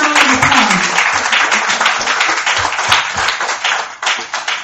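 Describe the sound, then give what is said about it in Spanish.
A crowd breaks into sustained, dense applause for God, many hands clapping at once in a steady roar for several seconds, with faint voices mixed underneath. “Dale a Dios un aplauso.”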